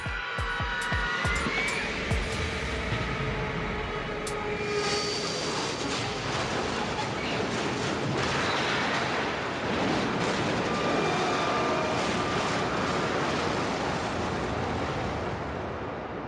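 A series of sharp impacts and metallic screeches opens into a loud, continuous grinding roar, like a heavy aircraft skidding across the ground after a crash landing, steady and unbroken to the end.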